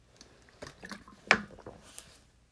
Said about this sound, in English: This podcast is sponsored by Poland Spring. I'm drinking the water right now.